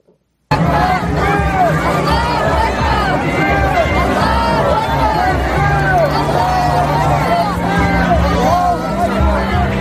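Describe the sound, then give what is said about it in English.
A large crowd at a protest chants "Allahu Akbar", many voices overlapping in a loud, continuous roar that starts abruptly after a brief silence and holds steady to the end, with a low hum underneath. “In case you can't hear, they're chanting Allahu Akbar.”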